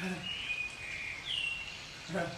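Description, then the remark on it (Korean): An oriole sings in sustained, fluting whistled notes that slide and waver in pitch, fairly clear and moderately loud over a soft outdoor background hiss. “아니 꾀꼬리다 꾀꼬리.”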